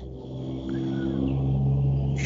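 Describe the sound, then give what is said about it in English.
A heavy truck's deep engine rumble rolls past outside a house, making the house vibrate, a steady low drone that swells slightly louder over a couple of seconds, with no voices. “In my house just vibrated because a truck went past.”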